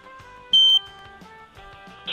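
A single loud, high-pitched smoke alarm beep cuts in for about a quarter second, standing out sharply over a quieter bed of steady tonal music.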